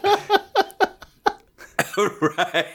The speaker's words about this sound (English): I cough so hard I almost puked.